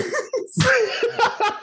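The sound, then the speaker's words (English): A single sharp sneeze, brought on by allergies, bursts out after a quick breathy intake, followed by a few garbled voiced sounds and brief murmured reactions. “All the drumming made me sneeze.”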